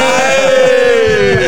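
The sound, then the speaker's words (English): A loud engine runs steadily, its droning hum holding a rich, buzzy tone that slowly sinks a little in pitch. “But to be honest, I wouldn't be able to hear her because the engine's too loud now.”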